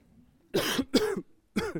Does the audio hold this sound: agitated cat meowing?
no